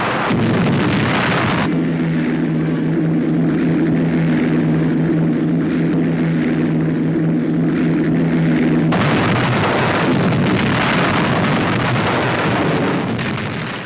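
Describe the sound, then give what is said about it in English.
Allied heavy and medium bombers drop bombs on German coastal defenses in the 24 hours before the landings; the explosions rumble in a loud, continuous roar, broken in the middle by a steady, low droning engine hum before the heavy blasts surge back. No one speaks. “Allied heavy and medium bombers, following in the wake of Bomber Command, send down their share of the 20,000 tons of bombs dropped in the 24 hours preceding the landings.”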